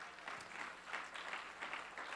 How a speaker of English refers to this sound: Somebody give him a great hand clap.